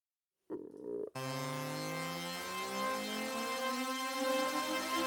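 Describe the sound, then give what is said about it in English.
A short tonal burst gives way to a sustained, harmonically rich synth tone that slowly climbs in pitch and swells in loudness: a tonal riser effect loaded for the 23-second ending of a trailer music track, with no voices. “So let's load up a riser.”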